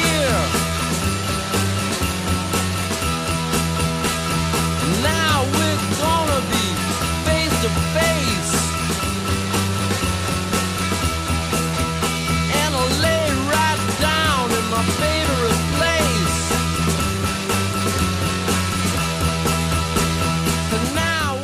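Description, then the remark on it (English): A dark, heavily distorted proto-punk guitar riff from a 1969 Detroit band grinds along loudly and steadily, its droning low chords looping every couple of seconds while sliding, wailing tones rise over the top. “That riff, you know, doing the research for the show, and I was listening to that song, and listening to these other songs that came out prior to that, nothing sounded like that.”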